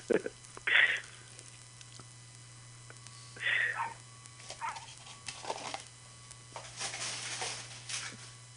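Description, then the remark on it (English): Someone imitates a dog, letting out a few sharp, scattered bark-like yelps over several seconds, with a steady low electrical hum underneath. “No, they're like, that's not a dog. That's a human and pretending to be a dog.”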